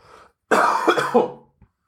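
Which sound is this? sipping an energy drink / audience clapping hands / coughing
coughing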